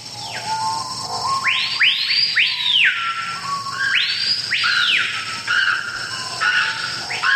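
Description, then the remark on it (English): Shrill, rising-and-falling screeches from birds in a jungle repeat in clustered bursts over a steady hiss of background noise, loud, with no voices. “The trees here are in misery, and the birds are in misery. I don't think they sing, they just screech in pain.”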